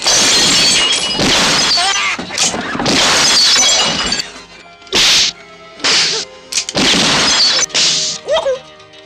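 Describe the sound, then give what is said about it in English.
Glass shatters in a series of loud crashes, several sharp breaking bursts with bright tinkling debris, separated by brief pauses. “Gotta hit the glass before it hits the floor.”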